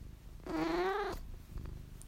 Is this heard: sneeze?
no